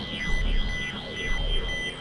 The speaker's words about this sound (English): Except there is another out of the blackness ringing noise that sounds almost like that alarm that woke you up every morning.